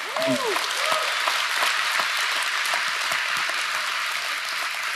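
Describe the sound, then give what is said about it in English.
A large church audience claps steadily for several seconds, a dense, even wash of applause that holds its level throughout, with a brief voice or cheer rising over it at the very start. “You're going to wish you'd held your applause when I say this next thing.”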